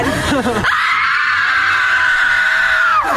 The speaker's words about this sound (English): Do you just feel like f***ing screaming? Let's just scream!